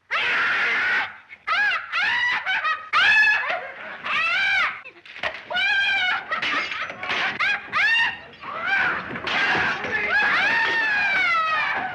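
A woman, the innkeeper Mrs. Hill in the movie The Invisible Man, screams over and over in loud, shrill bursts, her high voice wavering and wailing with only brief gaps between cries, the sound slightly thin like an old recording.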